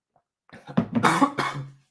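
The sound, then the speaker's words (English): A short burst of several harsh, raspy coughs in quick succession, fairly loud, with throaty clearing mixed in and no talking. “So sorry for all the coughing, you guys.”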